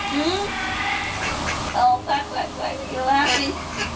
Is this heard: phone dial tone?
no